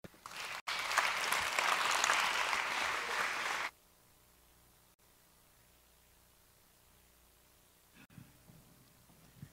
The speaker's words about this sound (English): So if you will, we're gonna welcome, I'm gonna ask y'all give a round of applause. Our first group up to the stage is going to be Young Lives,